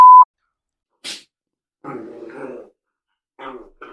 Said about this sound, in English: No, it's my dogs going.